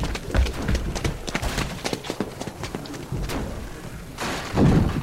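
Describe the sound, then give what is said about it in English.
Repeated heavy thuds and knocks pound irregularly on a lobby door blocked by rubble, loud, with a dull wooden resonance and a brief scrape or rumble near the end. “Lobby door! There's rubble against it, and they're still pounding on it!”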